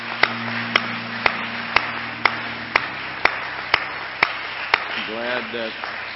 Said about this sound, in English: To all of our guests tonight, we're glad that you're here. We might not can shake your hands and be as friendly as we normally are, but why don't we all give our guests a good hand clap tonight?